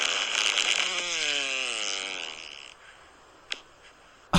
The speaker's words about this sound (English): Dude, the little pop at the that's end. That's a 9.5. That is a very good fart. That's the best.